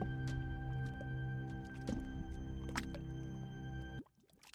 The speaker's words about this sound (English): Uh-oh. The bubbling continues.